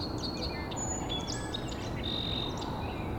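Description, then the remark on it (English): Song sparrows trade bright, overlapping trills and whistles back and forth, arguing over a small piece of territory in a swamp, over a steady low rumble of outdoor background noise. “And these song sparrows are still arguing over a little piece of territory.”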